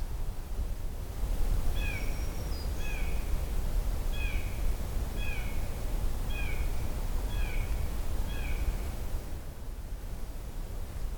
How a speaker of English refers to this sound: Favorite sounds here. Blue jay echo carrying through.